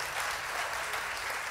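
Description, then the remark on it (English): A crowd claps together in a steady, dense wash of applause that holds at an even level throughout, with no voices standing out above it. “Come on, if you receive that, go ahead and clap your hands.”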